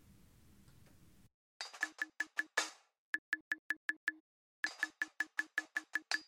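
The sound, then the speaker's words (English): A steady pattern of sharp clicks panned hard left alongside a filtered hi-hat panned hard right, tapping out quick, evenly spaced hits in short phrases separated by brief gaps of silence, with no talking. “So if you have your headphones on the right way, on the left side, you kind of have this clicking sound. And then on the right side, you have this hi-hat sound that have a little filter on.”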